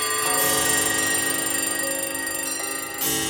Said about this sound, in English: Out of nowhere comes this cacophonous, startling cluster of alarm clocks, which only works because that fade-out went on for so long that you were lulled into a sense of peace.